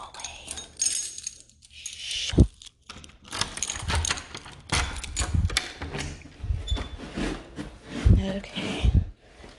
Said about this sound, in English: So here we go. Keys. Gotta find the keys. Here they are.